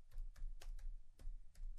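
Soft, irregular keyboard clicks tap out a handful of keystrokes close by, quiet over a low background rumble, with no one speaking.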